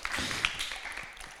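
A group of people clap together, a dense, steady patter of many hands that stays fairly soft and even throughout, with no voices over it.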